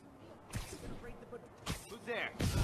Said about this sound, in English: However, I was able to get this clip of me doing 7 silent takedowns in a row, partially completing a stealth challenge inside an enemy base, which helps clear out the bad guys so there's less for me to deal with later.